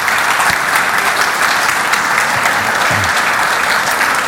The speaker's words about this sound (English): If you want to turn around, and we'll just maybe give a little round of applause.